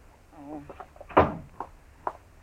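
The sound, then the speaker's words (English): A door swings shut with a solid thud right after a brief bit of talking, followed a moment later by a softer knock as things settle. “Shut the door, will you?”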